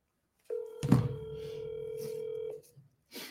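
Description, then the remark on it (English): A steady electronic phone tone sounds for about two seconds, like a call being placed, with a soft bump near its start and a short burst of noise after it stops. “Make some phone calls.”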